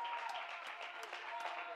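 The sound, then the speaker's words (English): A crowd of people clapping their hands in praise of God, a steady, dense wash of overlapping claps with a few sharper individual claps standing out, holding a fairly even loudness throughout. “Clap your hands and let's give God all the praise.”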